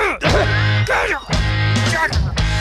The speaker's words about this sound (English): Oh, my God. I almost coughed up a lung.